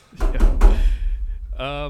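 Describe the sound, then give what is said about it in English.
Three quick knuckle raps on wood, fairly loud, in an uneven rhythm, knocked on wood just in case, followed a moment later by a short spoken word. “I'm going to knock on wood just in case.”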